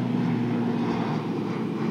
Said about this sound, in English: Plane overhead. Look at those props.